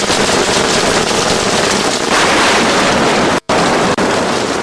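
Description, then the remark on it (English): Steady rain hisses in a dense, continuous wash, with a breeze adding a rougher, rushing layer; loud and unbroken apart from a sudden brief dropout near the end. “This sound of rain and its accompanying breeze sends many to sleep, snuggling safely and comfortably in a firm textured bed.”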